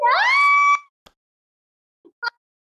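A loud, shrill scream that rises in pitch and holds for under a second, then cuts off into near silence broken by a few faint, brief knocks.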